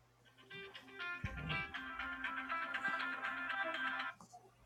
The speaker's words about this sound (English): I know that ringtone. Oh, man. It bled through? Damn. Yeah, I was getting a phone call.